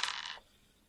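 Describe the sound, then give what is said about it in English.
A short, bright clatter of percentage dice tumbling across a hard surface, rattling for less than half a second before settling into quiet. No one speaks. “So go ahead and roll percentage dice to see if you knock him out.”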